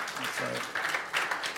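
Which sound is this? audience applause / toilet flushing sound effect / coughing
audience applause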